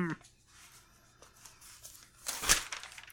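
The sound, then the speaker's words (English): A brief papery rustle of notebook pages being flipped swells to a crisp burst near the end, with faint handling noise before it and a snippet of voice at the very start. “have it written down in my handy notebook here.”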